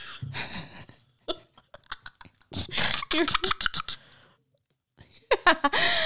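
Wet burping bursts come in several quick rounds, mixed with clicky mouth noises and throaty gulps, separated by brief silences.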